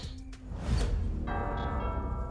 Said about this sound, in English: Oh, so you're telling me the Undertaker has a ring doorbell?